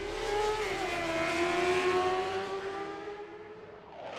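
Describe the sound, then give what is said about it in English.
A dragster engine roars steadily, its strong buzzing tone holding for several seconds before easing slightly lower in pitch near the end, with no voices. “The solution? Twin dragsters, Hellbender and Vampire.”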